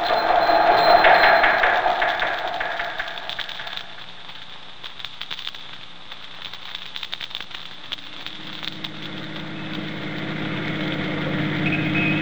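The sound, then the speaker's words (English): A car engine runs steadily throughout, a continuous rumbling drone that is slightly louder at first, then settles into an even, crackly hum with no voices. “Stop the car”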